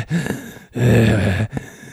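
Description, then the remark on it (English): A voice imitates heavy, menacing breathing: a ragged inhale, a long rasping exhale, then another short breath, loud and unaccompanied. “just like breathing heavy over top of him with the blood of his children all over my axe.”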